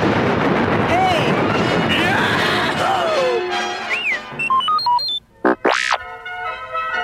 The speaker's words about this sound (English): Han hollered to Luke. Get to a laser cannon, kid! We've got four Imperial TIE fighters chasing us! Luke, still stunned by Ben's disappearance, managed to fire the cannon repeatedly until he and Han had shot down all their pursuers.